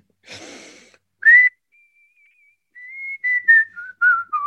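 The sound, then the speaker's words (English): After a quick breathy intake, someone whistles a short, wavering tune: a held note, then several clear notes stepping gently downward, with no talking. “Give us a little blast of the whistle.”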